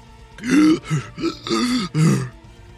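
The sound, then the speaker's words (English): A voice imitates someone choking after being hit in the throat by a whip: four or five strained, gurgling bursts in quick succession, harsh and throaty, fairly loud and with no words, trailing off at the end. “And again, and then the last one goes out and catches him right in the throat. And you hear him.”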